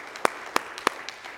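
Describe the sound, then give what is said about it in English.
A church audience claps hands together for the Lord in a steady rhythm, three sharp, crisp claps standing out before softer ones trail off, with no talking. “Come on, can we please give the Lord one more hand clap together today?”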